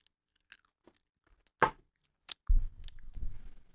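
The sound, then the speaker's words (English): A loud, sharp crunch as a raw carrot is bitten, followed by a few small snaps and then a stretch of steady, crackly, low chewing. No one speaks. “It was kind of a big bite.”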